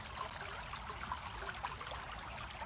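A steady stream burbles and trickles continuously, a soft, even wash of flowing water with small splashy bubbles, moderately quiet, with no voices.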